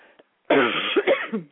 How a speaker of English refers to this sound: I'm so sorry, you guys. I'm going to try to find something that will help calm this cough while we're talking.